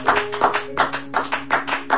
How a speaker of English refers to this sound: Clap your hands to the Lord and thank him tonight. Thank you, Jesus.